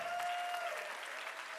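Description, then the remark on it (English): A church audience claps steadily in praise to the Lord, a dense wash of many hands applauding together, with a faint sustained tone ringing underneath and no voices standing out. “Give a hand clap to the Lord, for he is worthy.”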